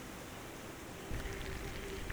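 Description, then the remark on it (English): A steady, soft rush of water falling from a waterfall, with a continuous hiss that swells slightly louder about halfway through. “The torrents of water pound your back.”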